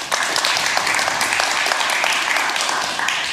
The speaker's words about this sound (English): Okay, we will start with North Dakota. Applaud for North Dakota.